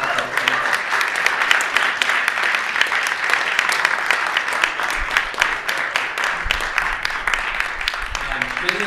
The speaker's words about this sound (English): But can we, like, I mean, at least clap for them right now?